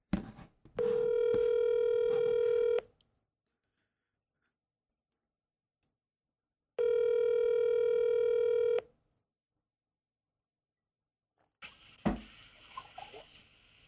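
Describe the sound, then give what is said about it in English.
A phone call to a guest rings out twice: two steady, buzzing ringback tones of about two seconds each, separated by a long silent gap, followed by a brief clatter as the call is picked up. “About to get Mr. Josh Tillman on the phone.”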